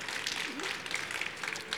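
A crowd at CES in the grand lobby claps for first-time attendees, producing a dense, continuous patter of many overlapping hand claps that holds at an even, moderate level for the whole stretch, with no clear speech on top.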